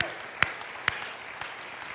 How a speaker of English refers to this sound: They're bedrock here, but I think you should give them a round of applause.